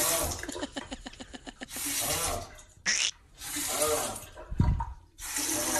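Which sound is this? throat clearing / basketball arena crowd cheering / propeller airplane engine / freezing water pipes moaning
freezing water pipes moaning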